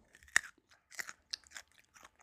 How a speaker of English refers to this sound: That's called the crunch of a carrot.